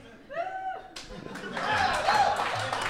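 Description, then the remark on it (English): Scattered applause from a live show audience, answering a host's call for applause from those who want a bit to end. It starts with a few separate claps, then thickens into a steady patter of clapping. A short voiced sound, like a laugh or call, precedes it. “If, like by show of applause, how many people want this bit to end forever?”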